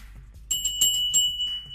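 A loud, bright bell, rung to celebrate reaching 200 likes, rings out after a brief quiet moment, struck rapidly several times in an uneven rhythm, its high metallic tone sustaining between strikes. No one speaks.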